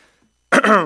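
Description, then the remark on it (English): A single loud throat clearing by a preacher during a Sunday sermon: an abrupt rough burst that slides into a short, voiced, gravelly rasp, coming out of near silence with no talking. “I have been coughing a little less each Sunday.”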